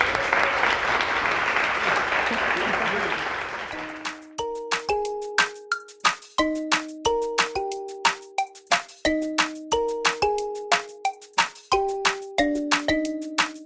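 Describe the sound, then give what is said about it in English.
A crowd claps loudly for a guest in a dense, steady burst for about four seconds. Applause then gives way to a run of bright, ringing chime-like notes struck in a lively rhythm. “We're gonna huge round of applause for Dr. Booth.”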